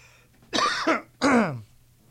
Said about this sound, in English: I just look at you now and I cough.